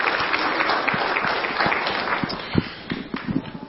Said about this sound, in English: So could we give these guys a round of applause?